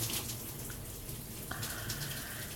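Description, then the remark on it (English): Water streams steadily from a shower, a constant hiss and splatter with no voices, its tone shifting slightly partway through as the spray changes. “With this scenario bouncing around in my head, I shower”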